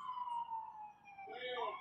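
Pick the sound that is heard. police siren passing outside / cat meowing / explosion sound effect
police siren passing outside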